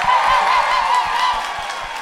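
A crowd claps and cheers steadily throughout for an audience member, a dense, loud wash of applause with a wavering whistle rising above it early on, easing slightly toward the end.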